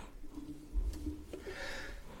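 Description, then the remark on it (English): A single muffled sneeze, faint and turned away from the microphone, with a short catch of breath followed by a breathy, hissing burst that trails off. No one speaks. “I didn't want to sneeze right into the microphone.”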